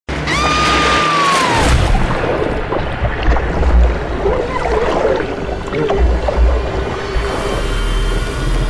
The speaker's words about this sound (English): Then we move on to Falling in Water.